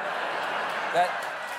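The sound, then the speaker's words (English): Steady audience applause for someone presented as Representative Santos fills the whole stretch as a dense, even wash of clapping, with a brief higher vocal sound rising out of the crowd about midway. “No, don't applaud him.”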